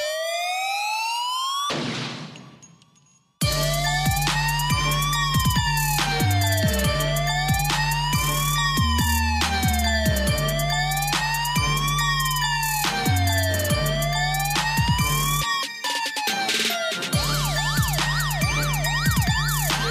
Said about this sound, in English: Siren.